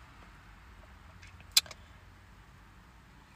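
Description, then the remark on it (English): Quiet, steady low rumble of a car interior with no one talking, broken once midway by a brief sharp click and a faint metallic jingle. “Yes, I'm in my car.”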